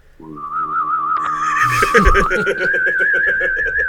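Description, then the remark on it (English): A wavering, warbly hummed whistle rises and holds a steady vibrato, a voice imitating a UFO coming in for a landing, with a brief noisy swell midway. “I need you to hum whistle for me. Oh, like I'm a UFO. Yeah. Coming in for a landing.”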